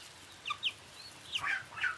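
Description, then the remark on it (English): At least 25 chickens cluck in short, irregular bursts in the afternoon, several calls overlapping near the end, over a low, steady background hum with no one talking. “Okay, those were the chickens.”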